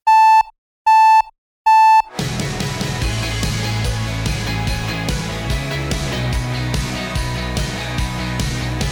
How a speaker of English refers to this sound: Whenever I hear an alarm going off in a podcast or a TV show, it always makes me flinch because they always use a really harsh, loud buzzer